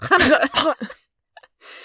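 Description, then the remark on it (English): A voice makes a harsh, guttural throat-clearing 'ch' sound, as at the start of the word Chanukah: a couple of raspy bursts followed by a short pause and a softer breathy scrape at the end. “It's like you're trying to clear your throat.”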